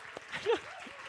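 A church audience claps steadily for Pastor Shane and Mary in a dense, crackling wash of applause, with a brief rising vocal sound poking out over the clapping midway through.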